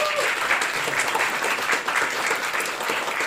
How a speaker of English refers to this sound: So a big round of applause wherever they are.